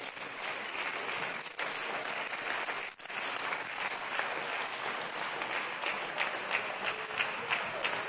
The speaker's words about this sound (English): Let's give the Lord a good hand clap of praise today.